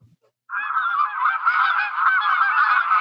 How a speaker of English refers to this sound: They're geese. Oh, Canada geese. You know, often the Canada geese are very common